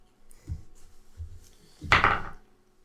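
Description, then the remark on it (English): Dice tumble across a wooden table: two soft, low knocks, then a brief, louder clattering rattle that quickly dies away. No one speaks. “Maybe you want to use different really, dice.”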